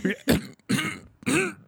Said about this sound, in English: And then he said that his coworker was like, why don't you just cough? Just cough. It's so annoying.